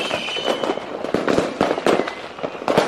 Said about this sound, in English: You should see these fireworks, sir. Hello, sir. Hello. Yeah, these fireworks are crazy in here.